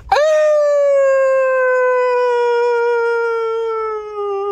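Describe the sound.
A voice imitates the old phantom full-time siren a man in the footy crowd used to make before the real siren, one loud, sustained wail that swoops up sharply, then holds for about four seconds while its pitch slowly sags. No other talk.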